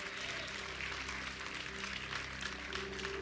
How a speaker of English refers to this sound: Can we clap our hands for the Lord? Amen.